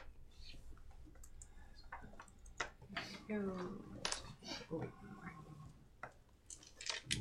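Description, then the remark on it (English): A handful of dice clatters and rattles across a hard surface in a burst of rapid clicks and knocks, with faint voices murmuring underneath. “That is a significant number of dice.”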